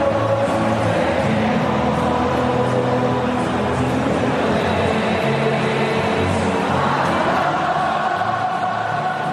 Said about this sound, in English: But what I found really interesting is the lights went out, and then did you notice this? The crowd started singing at the Gabba. Let's have a listen to the crowd singing last night.